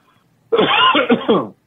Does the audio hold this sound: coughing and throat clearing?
yes